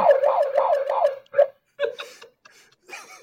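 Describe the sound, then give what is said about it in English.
A bullhorn's siren setting lets out a loud, rapidly warbling electronic wail for about a second, followed by a short chirp and a few scattered noisy bursts with brief pauses between. “It has a siren function.”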